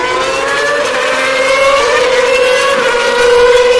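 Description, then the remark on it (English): Formula One cars, a Toro Rosso followed by a Force India, exit the pit lane at Spa for the second part of qualifying, with a loud, high-pitched engine whine that holds steady and rises slightly, one car blending into the next without any talking. “The other one, followed by a Force India, exiting the pit lane for the second part of qualifying here today.”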